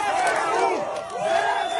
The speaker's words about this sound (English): Residents poured into the streets and cheered.